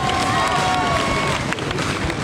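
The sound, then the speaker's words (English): A loud, dense roar from a big roadside crowd at the finish of a cycling race, with constant clattering and banging from spectators hitting the barriers and a few horn-like tones rising over the din. “Yeah, it's quite deafening here with everyone banging on the barriers.”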